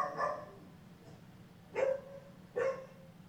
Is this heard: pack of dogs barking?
yes